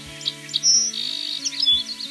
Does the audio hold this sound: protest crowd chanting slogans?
no